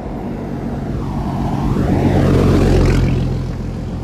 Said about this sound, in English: Crazy ass diesel truck. You can tell by the engine.